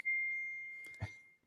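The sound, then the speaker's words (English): A single bright phone notification ding rings out clearly and slowly fades over about a second, with a soft knock or bump partway through the decay. No one speaks. “And there is Emmanuel on cue with his one a day or one a podcast noise from his phone.”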